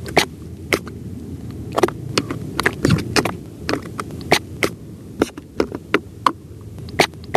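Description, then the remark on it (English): Scallops clapping their shells underwater on Martha's Vineyard: a steady scatter of sharp, crisp clicks and snaps at irregular intervals, some in quick pairs, over a low, murky rumble with no voices. “Scallops clapping on Martha's Vineyard.”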